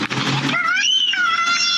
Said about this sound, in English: That's a kid screaming.